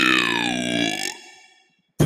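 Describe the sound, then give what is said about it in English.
A loud, long, throaty burp rumbles for about a second with a falling pitch, then trails off into silence before a brief burst of noise at the end. “No, when I burp, I need to.”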